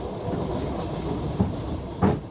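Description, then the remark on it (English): A train rumbles steadily along the track toward Pokrovsk in eastern Ukraine, its low continuous roar broken by two sharp clacks as the wheels pass over rail joints, fairly loud with no talking. “We're on a journey which people are being told not to take. A train, not just to the battlefield, but home.”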